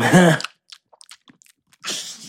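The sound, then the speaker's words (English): Crunchy chewing of candy right at the microphone: a quick run of sharp, irregular crackles, between a brief vocal sound at the start and a breathy rush at the end. “Oh my God, you're going to ASMR crunch candy in my microphones?”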